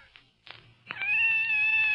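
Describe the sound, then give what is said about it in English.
A few faint scrapes and taps give way to a single long, drawn-out meow from a scared cat coming out of a closet, loud, holding steady for about a second with no talking. “It's a cat.”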